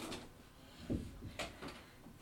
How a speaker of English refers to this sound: Hey. 1 second, let me shut this door.